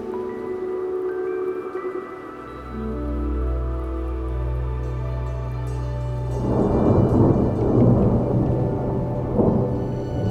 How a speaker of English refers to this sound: The thunder abates to a hushed reverberation, softly rumbling in the distance again.